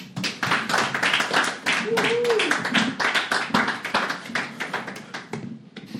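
A crowd gives a speaker another round of applause, many hands clapping in a dense, continuous patter that holds at a fairly strong level for several seconds, with a brief rising cheer partway through.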